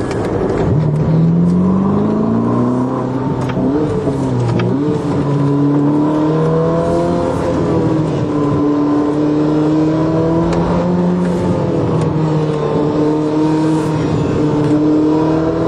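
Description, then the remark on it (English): A hybrid sports car's rear gasoline engine kicks on as it is given a little gas and hums steadily, its tone climbing and dipping as it revs smoothly through acceleration, with no voices over it. “Now, if I give it a little bit of gas here, the gasoline engine will kick on, and then you can hear that.”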